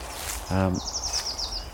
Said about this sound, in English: And hawthorn is just coming into leaf as well, so everywhere feels fresh, and there's glorious birdsong here.